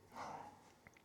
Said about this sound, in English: I can't tell, I don't have the mics on or the headphones on, so I can't tell if you can hear my dog, but she's going off right now.